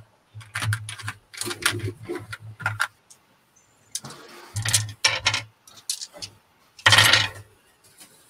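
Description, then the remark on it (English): Many dice clatter and rattle across a hard surface as they are rolled for an observation roll, in several quick bursts of sharp clicks separated by short pauses. Fairly loud, with no one speaking. “Man, all those dice and only one.”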